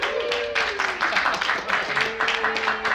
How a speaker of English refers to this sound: Wait. Thank you. Are you clapping that I'm back, right? How do you feel about that? Yeah, yeah. Wait, are you clapping that I'm back or that I was gone?